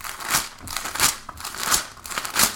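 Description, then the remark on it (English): Paper rustles and crinkles as the pages of a book of scriptures are handled and turned, in four or five soft, papery bursts spaced roughly half a second apart, with no one talking. “Let me grab my scriptures here.”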